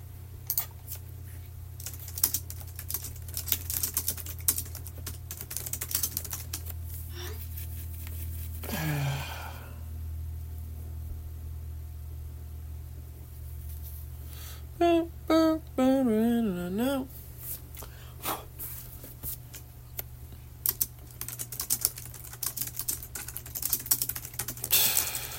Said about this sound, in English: Look at that fast typing.